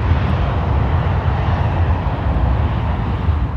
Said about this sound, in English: Plane. Train. It is a plane.